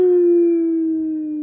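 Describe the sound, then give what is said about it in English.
A domestic dog (Canis lupus familiaris) lets out a single long, steady howl that drifts slightly lower in pitch as it fades, heard alone with no talking. “class, Mammalia; order, Carnivora; suborder, Caniformia; family, Canidae; genus, Canis; species, C. lupus; subspecies, C. I. familiaris.”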